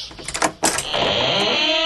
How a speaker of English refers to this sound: Can't help but notice the door's still squeaking.